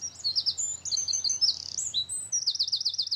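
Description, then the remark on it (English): Sparrows sing in a lively, continuous stream of high chirps, trills and warbling phrases, clear, with several overlapping notes and a rapid repeated trill near the end. “So I picked myself up, put on my walking shoes, turned the volume up on my headphones, and listened to a track of sparrows singing, and I go on what I call a praise walk.”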